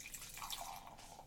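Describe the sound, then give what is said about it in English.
A canned vodka cocktail with ginger and lime juice is poured from the can into a glass, with steady liquid splashing and a bright crackle of bubbles, fairly quiet, with no one talking. “All right, I'm going to pop this top. Oh, my top. Nice. And the pour.”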